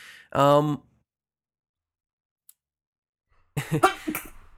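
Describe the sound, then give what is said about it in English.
A single sharp sneeze bursts out near the start, followed by a couple of seconds of silence before people begin talking. “bless you.”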